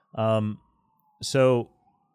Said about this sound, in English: I live close to a fire department, so I'm sure you hear that in the background.